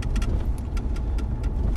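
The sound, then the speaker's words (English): The engine of a 1969 Charger muscle car idles with a deep, steady rumble and a loping, rhythmic pulse of clicks and ticks on top. Nobody talks. “What car would you rather have? Trans Am or this 1969 Charger?”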